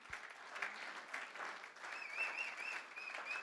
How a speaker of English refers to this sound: Give them a clap as they come up.